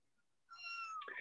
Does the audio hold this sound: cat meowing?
yes